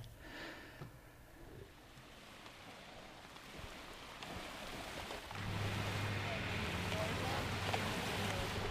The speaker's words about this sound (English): we are on the boardwalk in front of the police station, just recording some waves and traffic. That'd be so cool if we heard a whale on this. Alert Bay, close your eyes and you can hear it.